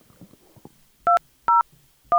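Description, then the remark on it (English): Three loud, evenly spaced telephone keypad tones, each a short pair of steady pitches, beep out as a call is dialed, after a brief stretch of faint rustling and low murmur. “We're going to call Andy.”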